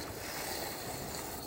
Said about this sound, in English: All right, so now I got my rice boiling, my water boiling here for my rice.